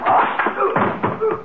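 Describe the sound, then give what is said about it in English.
A wooden chair smashes over someone's head: a loud burst of cracking wood followed by a few clattering knocks and thuds as pieces fall, with no talking. “Sorry, I broke the chair on your head”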